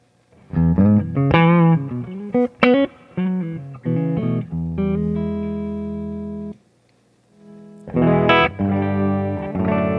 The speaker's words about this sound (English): Yep, sounds like a Gibson. G's a little out.